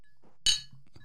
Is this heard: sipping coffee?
no